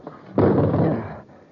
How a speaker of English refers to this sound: Hey, Commander, how about the window? It isn't very big, but I think if we smashed it, we could get through. And this metal chair ought to do the trick.